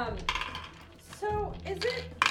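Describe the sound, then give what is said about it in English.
Dice clatter and rattle across a tabletop in a couple of quick bursts as players roll for initiative, one near the start and another at the end, while people talk in between. “The creature lets loose a wall-shaking, ear-splitting shriek, and let's roll initiative.”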